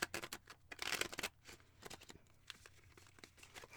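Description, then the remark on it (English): Quiet riffling and rustling of a deck of playing cards being shuffled, a dense run of soft papery clicks that bursts busily early on and then settles into lighter, scattered flicks. “The like quiet shuffling.”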